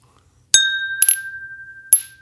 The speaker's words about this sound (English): Oh, your clinking sounds terrible. My clinking's expert, pure fucking expert. You stole that clinking from me. Your clink sucks, sir.